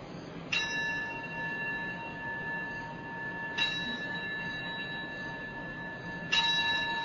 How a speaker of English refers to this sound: Okay, so we'll begin with three bells, and then we'll do a simple bow and begin the chanting.